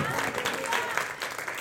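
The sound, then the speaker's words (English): A church audience bursts into sustained applause offered to the Lord, dense clapping mixed with scattered shouts of glory and cheers, loud and steady throughout with no pause. “If it's to the Lord, give it heart with a big shout of glory in the house.”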